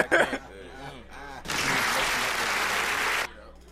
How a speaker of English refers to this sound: Give you applause on that one.